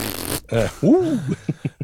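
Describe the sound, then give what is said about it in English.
A voice imitates fart noises: a breathy burst, then buzzy, wobbling raspberries that rise and fall in pitch, ending in several short sputtering puffs. “Ooh, can I get in some of that fart noise action?”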